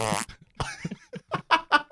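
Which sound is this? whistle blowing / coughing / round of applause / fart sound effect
fart sound effect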